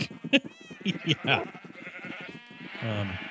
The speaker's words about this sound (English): Yeah. So this... then, do you hear sheep?